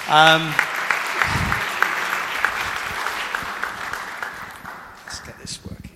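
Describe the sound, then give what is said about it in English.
An audience applauds to welcome a man invited up to join the speaker, a steady, dense patter of many hands clapping for several seconds, fading slightly toward the end, with a brief voice at the very start. “Give him a little clap.”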